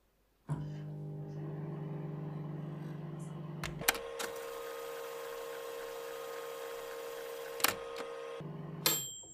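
A microwave oven heating eggs for 20 seconds hums steadily with a low electrical drone, its tone shifting partway through, punctuated by a few sharp clicks and ending with a brief clatter, no voices.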